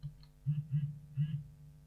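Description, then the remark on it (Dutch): Three short buzzing vibration pulses from a Hable braille keyboard being switched back on, two as it turns on and a third when it connects to the phone, low and humming, spaced unevenly with a slightly longer gap before the last one, fairly quiet with no talking. “De Hable trilt om aan te geven dat hij contact heeft. 2 keer om aan te geven dat hij aangaat.”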